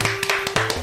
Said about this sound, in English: Give me a crowd clap right now. I'll interrupt the music.